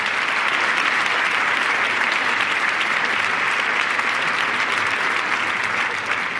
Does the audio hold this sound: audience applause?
yes